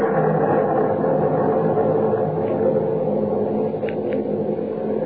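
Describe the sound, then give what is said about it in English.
A loud, sustained low rumble rolls on without pause, like thunder from a breaking storm, filling the whole stretch with steady, heavy noise and no voices. “Storm's breaking.”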